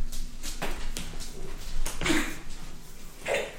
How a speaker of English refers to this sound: Dog vomit. Did you actually... She didn't actually vomit. No, it's a little bit of spit. It's there. I can see it.